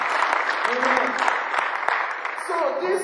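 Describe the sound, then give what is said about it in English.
A church audience claps steadily together for Jesus, a dense sustained wash of many hands, with voices calling out beneath the applause throughout. “Clap for Jesus.”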